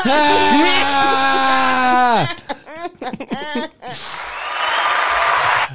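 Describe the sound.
A long, wavering vocal whine and some brief voiced sounds give way to a short burst of applause, a dense hiss of clapping lasting under two seconds before stopping.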